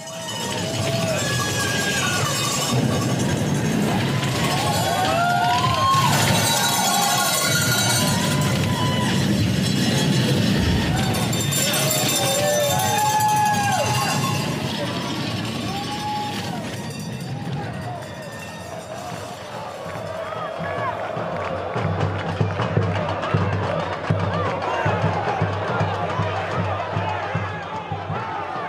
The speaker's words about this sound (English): like a piece of music that if you just sit and listen to the crowd, you hear like how it swells and dives and peaks and then suddenly bursts. It sounds to me like an orchestra.